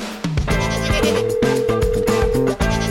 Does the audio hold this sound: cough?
no